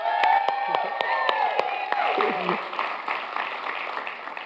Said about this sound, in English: And for those who are home, there's actually a very nice studio audience here today at the Bethany Community. Wait a minute. Everybody applaud really loud so the people at home can know you're here.